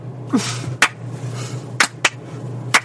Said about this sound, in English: Wow, I thought that was a slow clap, but you made it like a rhythmic, that thing you do. I want you to know I was gonna start the slow clap, and then I lost control, and these babies found their own rhythm.